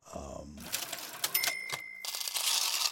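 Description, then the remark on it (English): A cash register clatters with rapid mechanical key clacks and a bright ringing ding in the middle, loud, after a brief murmur of a voice at the start. “damn it, you're ringing it up, and it's a lot.”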